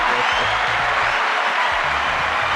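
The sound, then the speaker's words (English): A canned cheering sound effect is played back: a crowd cheers and applauds loudly and continuously, a dense wash of clapping and shouting with no pauses. “You're playing cheering noises.”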